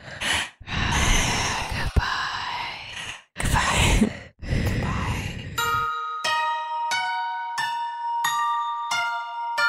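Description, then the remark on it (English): Several loud, heavy breaths huff in ragged bursts, then give way to a run of bright, repeating chime-like tones. “And then this heavy breathing.”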